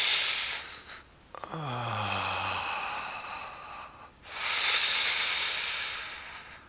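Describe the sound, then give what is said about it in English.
Slow hollow flute breath, breathing through pursed lips as if through a straw: a long airy inhale with a faint whistling tone that slides downward, a pause, then a louder rushing hiss of breath. “And you want to do the hollow flute breath? Yeah. So imagining you're breathing to a straw.”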